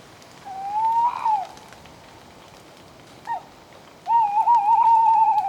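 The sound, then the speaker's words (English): A tawny owl (Strix aluco), an owl of Europe, hoots: a drawn-out rising hoot, a pause, a short soft note, then a long wavering, quavering hoot, heard clearly over a steady hiss like light rain. “Remember the spooky sound of the tawny owl?”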